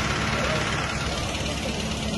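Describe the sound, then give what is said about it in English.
A concrete pumping truck's engine idles outside alongside cement trucks with a steady, low rumbling drone that holds constant throughout, fairly loud, with faint indistinct voices mixed into the background. “We got cement trucks right off the bat. Concrete pumping trucks.”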